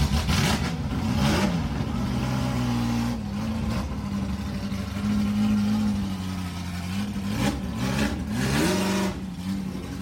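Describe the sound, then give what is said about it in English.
A Porsche sports car engine starts up and runs loudly and continuously, its low droning tone rising and falling as it is revved a few times, with no voices present. “But the sound that thing made when it started up was, I mean.”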